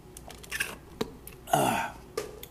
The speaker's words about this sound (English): Hang on. I need to take a sip of my coffee.